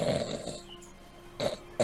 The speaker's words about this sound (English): But the closer you get, the more you realize that the figure beneath that is powerfully built. You have thick arms, thick legs. You can smell the kind of rancidness of their breath as you get even closer. And there's heavy snoring here.